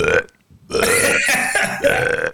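A long, loud burp straight into the microphone, rumbling and drawn out for over a second after a brief lead-in sound, with no talking.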